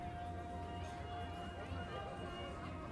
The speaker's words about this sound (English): As she waits impatiently, the road clogs up with cars and bikes and people. A chance for aunts and uncles to catch up on the family news. People laughing, neighbors chatting, shouts of recognition from long-lost friends.